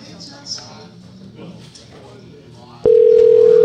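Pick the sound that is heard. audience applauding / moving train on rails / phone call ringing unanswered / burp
phone call ringing unanswered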